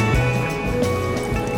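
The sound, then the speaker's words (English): Coffee pours into a mug in a steady, continuous stream with a soft liquid gurgle and no one speaking. “Early bird will pour a little coffee here. You want to pass me your mug?”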